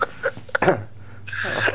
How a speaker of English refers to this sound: Now, excuse me, I'm keep coughing.